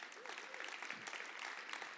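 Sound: audience applauding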